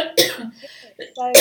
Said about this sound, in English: Sorry, I'm going to cough.